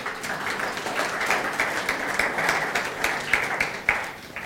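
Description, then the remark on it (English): A church audience applauds steadily for several seconds for the worship team and the helpers behind the scenes, a dense wash of many hands clapping with a few sharper claps standing out, easing slightly near the end. “So just a round of applause for all them.”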